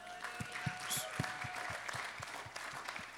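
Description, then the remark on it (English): A large crowd gives the Lord a sustained round of applause, dense and loud throughout, with a steady rhythmic low thump pulsing beneath the clapping and indistinct voices mixed in. “Give the Lord a round of applause for my wife.”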